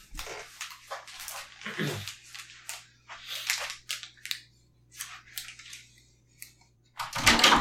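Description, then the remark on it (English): An upset dog whines and scuffles as it is being let in, in a string of short, uneven bursts, ending with a louder burst of noise, with a steady low hum underneath and no talking. “I'm going to let my dog in because he's upset.”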